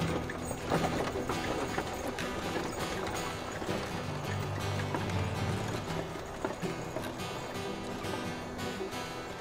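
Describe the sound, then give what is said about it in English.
Horse hooves clip-clop steadily beneath the creak and rattle of a wooden wagon as the horses pull it away across a prairie, a busy, continuous rolling sound that holds at a moderate level without any voices. “She clicked her tongue, and the horses pulled away across the prairie.”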